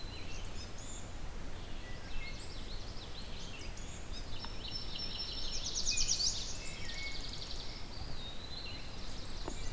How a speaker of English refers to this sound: So there's an eastern woodpewee here too.